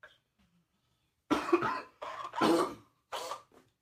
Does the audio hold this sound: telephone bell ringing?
no